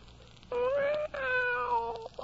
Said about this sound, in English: Hush up, kitty. You're not hungry. Just had some mackerel an hour ago. Drink your milk.